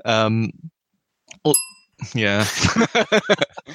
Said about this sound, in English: I was going to apologize for dinging there because I knocked the bell by accident, but then you did a thing, so I banged it.